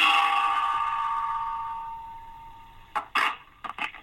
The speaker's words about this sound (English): I've got a frying pan and a big metal spoon. Just bear with me a second. I'll give it a shot.